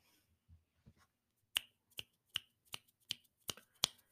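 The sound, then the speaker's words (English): A run of about eight crisp finger snaps in a steady rhythm, snapped in place of applause, sharp and fairly loud with nothing else over them, after a few faint low thumps. “It's my little snap of applause.”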